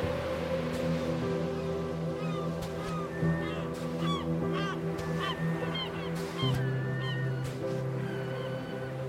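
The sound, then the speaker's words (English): Seagulls flying overhead near the tops of palm trees on a beach cry repeatedly, their high, mewing calls overlapping in scattered bursts over a steady low rumble of background ambience, with no one speaking. “Seagulls flew overhead, hovering near the tops of the palms.”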